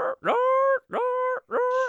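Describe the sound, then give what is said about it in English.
A person's voice imitates the yelping of an animal shot at about 40 yards as it thrashes on the ground, likened to a dog whose foot was stepped on: three loud, high-pitched whining yelps, each rising sharply and then holding steady for about half a second, with short gaps between them. “Now he's laying there, and about 10 seconds after I shoot, he starts thrashing, and he starts just like you had stepped on your dog's foot.”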